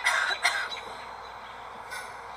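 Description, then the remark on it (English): A bird mimics a human cough: a pair of harsh, raspy coughs, then a quieter third cough after a short pause, with no talking. “Second one was a cough?”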